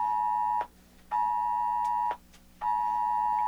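A loud phone test alert tone sounds in steady, high-pitched electronic bursts, each about a second long, separated by brief pauses. No one speaks.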